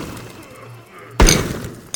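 Glass breaking with a sudden, loud crash about midway through, bright shattering fragments ringing out for the rest of the moment after a quieter low rumble beforehand.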